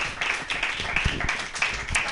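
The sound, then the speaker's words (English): An audience claps for a performer on stage, a dense patter of many overlapping hand claps with sharp bright transients, sustained at a moderate level throughout with no voices on top. “Clap for me.”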